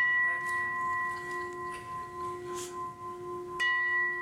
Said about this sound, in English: Three gongs? Does the first one count?